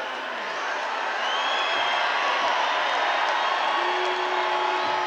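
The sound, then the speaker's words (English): A large hometown concert crowd cheers and roars continuously, a dense wall of shouting and whoops that stays loud and steady for several seconds with no talking over it. “So then we get kind of the big hometown crowd moment here.”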